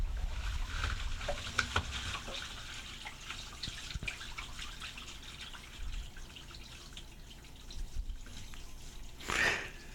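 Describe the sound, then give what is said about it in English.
Water trickles steadily at low volume, a soft continuous babble broken by small drips and splashes, with a brief louder gush near the end. No one speaks. “I was asking if you heard the water trickling through.”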